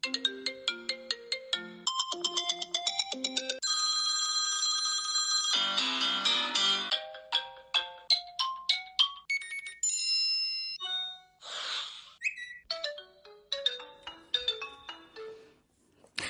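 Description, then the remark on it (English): A loud, bright electronic phone ringtone plays on its own, running through quick staccato melodic notes with a brief sustained chord, then more bouncy, jingly note runs. “I feel like I am reaching for my phone, worried it's left on in studio.”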